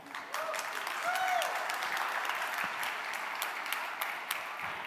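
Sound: conference audience applause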